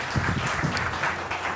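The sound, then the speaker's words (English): A crowd claps steadily, a dense patter of many hands at an even moderate loudness, with a faint murmur of voices underneath. “Let's give him a clap.”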